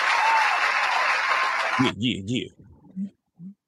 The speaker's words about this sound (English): Wait, shout out to moms. Give moms a round of applause.